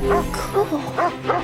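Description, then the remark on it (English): A dog barks in four short, yappy bursts spaced unevenly over a second and a half, moderately loud against a faint background hum. “Did you see the dog?”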